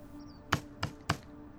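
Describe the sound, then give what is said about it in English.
Someone knocks three times on the metal screen door at the front of a house, evenly spaced about a third of a second apart, each a bright rattling hit over a low steady hum, with no talking. “I knock 3 times”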